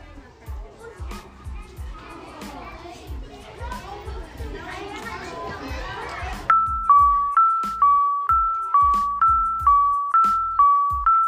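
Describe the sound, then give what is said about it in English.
A school bell rings as a loud two-tone electronic chime, repeating in a steady rhythm for several seconds, after a noisy stretch of children chattering and playing. “This week's podcast is brought to you by our school bell.”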